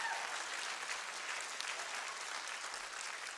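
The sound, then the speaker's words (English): An audience claps steadily, a dense, continuous patter of many hands with no distinct beat, filling the whole few seconds at an even, fairly soft level. “You better clap on this side like you actually get it.”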